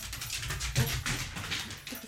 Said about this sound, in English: I would bark like that, too, if I wanted my snack. There's a lot of excitement going on right now. Can you hear this?